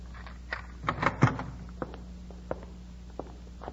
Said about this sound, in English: open the door.